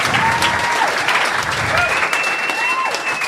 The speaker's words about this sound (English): Guys, big round of applause for everyone you saw on the Little Dum Dum Club today. Dilruk Jayasinha, Sam Dastyari, Daniel Sloss, Ronny Chieng. Please.